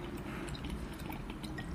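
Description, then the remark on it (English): Liquid being poured in a steady, continuous stream, a soft splashing trickle with faint drip-like flecks, fairly quiet, with no talking. “I'm just going to let you pour that down.”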